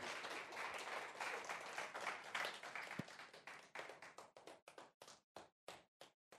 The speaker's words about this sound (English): Let's have a round of applause for our performers.